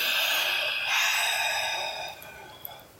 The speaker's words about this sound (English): Okay. Starts breathing slowly. Smiles as I take a deep breath.